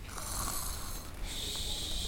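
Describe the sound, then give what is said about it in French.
Loud, raspy snoring of a wolf that has gone back to bed, a harsh rattling breath that shifts into a new stroke about halfway through, heard alone with no talking. “Rassasié, il retourna se coucher et se mit à ronfler.”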